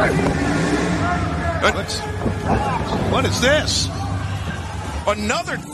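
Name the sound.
truck pulling up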